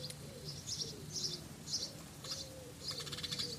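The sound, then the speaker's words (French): Small birds of the Perche region in France chirp in repeated bright bursts outdoors, with a soft lower cooing or call pattern underneath and steady ambient background noise; no one speaks. “Et la bande-son, l'habillage sonore de cet épisode, vous est offert par les petits oiseaux du Perche.”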